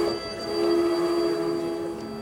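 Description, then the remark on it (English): A train pulls into Grand Central Depot at 10:30 p.m. on a foggy night, with a steady metallic squeal of wheels over a broad rumbling wash, sustained, with no voices. “train pulls into Grand Central Depot, the predecessor of Grand Central Station.”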